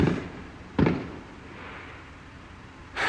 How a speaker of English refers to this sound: And just like that, two fireworks sounded off